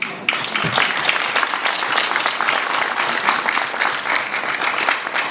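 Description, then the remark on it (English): A room full of people claps steadily, the applause dense and sustained from start to finish, with a faint murmur of voices underneath. “I'm going to stand up and applaud.”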